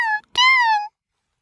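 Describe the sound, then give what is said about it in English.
A cat meows loudly, first a short clipped cry and then a longer, drawn-out meow that rises and falls in pitch, followed by silence. “Mr. Timkins is your cat.”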